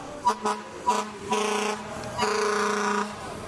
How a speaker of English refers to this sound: A Buffalo fire truck going by, honking, I assume, in show of support.